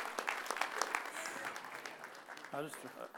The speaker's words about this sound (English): Yes, if you would, just give him another hand clap of praise. Amen.